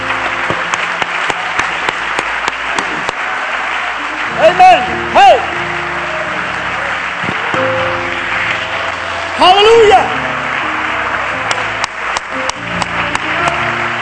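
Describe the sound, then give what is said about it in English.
A church audience claps hands unto the Lord as a praise offering in sustained, dense applause for the whole stretch, with voices calling out loudly over it twice. “Put your Bibles down behind you, and we're just going to clap our hands unto the Lord as a praise offering to God.”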